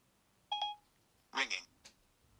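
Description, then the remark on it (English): An iPhone dialing a call: a couple of short electronic beep tones, then a ringing tone, a brief burst of voice-like sound and a faint click, all fairly quiet. “Ringing.”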